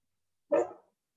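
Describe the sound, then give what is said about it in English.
A single dog bark, short and sharp with a quick attack and fading tail, standing alone against silence with no talking around it. “Oh, the dog.”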